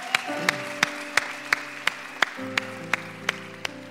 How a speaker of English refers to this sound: Can we give these seven individuals that raised their hand a huge round of applause?